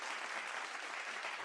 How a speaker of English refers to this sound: Yes. Yes, you get an applause for that.